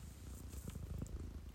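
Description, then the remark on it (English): A female pet cat named Cinny purrs softly right beside the listener, a low, steady rumble with a gentle pulsing rhythm, quiet and continuous throughout, with no voices present. “My cat is right next to me and she's looking real comfy and ready for some mental health talk.”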